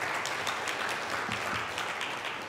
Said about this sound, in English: Let's have another clap of appreciation for our worship band today.